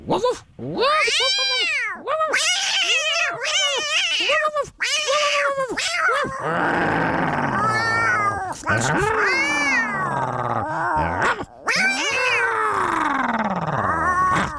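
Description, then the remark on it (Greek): Two people on the Good Morning Show radio programme trade exaggerated yowls, wails and growly barks, imitating a cat and dog squabbling; the sliding, wavering cries come loud, overlapping in a continuous noisy back-and-forth. “Να μαλώσουν με ήχους σαν το σκύλο με τη γάτα.”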